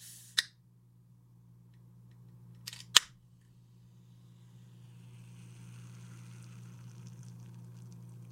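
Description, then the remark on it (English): A few sharp clicks as a drink of carbonated water with natural essence is opened, followed by a soft, steady fizz of bubbles that lingers over a low background hum, with no one speaking. “If some people had their druthers, it would just be the sound of bubbles for the next 54 minutes.”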